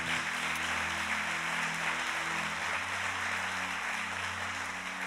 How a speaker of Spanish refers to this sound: ¿Cuántos dicen amén? Dale un fuerte aplauso. Aplauso al Señor, si tú lo crees.